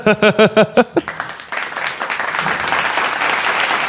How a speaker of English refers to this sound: They just don't stop clapping. Thanks. Yeah. Shout outs to our studio audience for being here today.